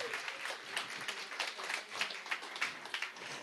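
Audience applause, a dense, steady patter of many hands clapping at moderate volume for a few seconds with no voices on top.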